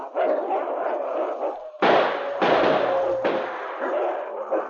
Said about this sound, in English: But suddenly, shots rang out. The wolf pack wavered and fell back as a snarling husky charged forward to take his place at the gray wolf's side.